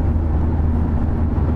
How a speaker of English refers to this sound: 12 lanes of traffic.